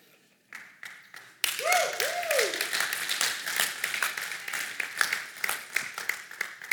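An audience breaks into dense, sustained applause after a few scattered claps, with a couple of rising whoops or whistles near the start and steady clapping continuing to the end.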